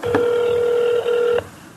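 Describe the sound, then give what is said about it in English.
A phone tone plays through a speakerphone with a microphone held up to the phone, during a call to United Talent Agency: one steady electronic beep lasting just over a second, bracketed by soft clicks, with faint hiss around it and no talking. “And I guess I'm going to put my mic up to the phone here so we can hear the people.”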